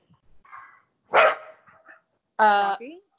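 Two dogs, one named Lambo, bark and yip as they play in the house, with two loud sharp barks separated by softer whines and grumbles, ending in a brief high yelp.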